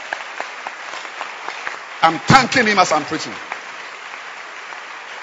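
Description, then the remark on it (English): An audience claps for the Holy Ghost steadily in a dense, continuous patter throughout, while a man's voice speaks loudly over the applause for a moment in the middle. “Continue clapping and let's clap for the Holy Ghost.”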